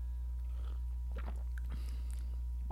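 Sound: sipping beer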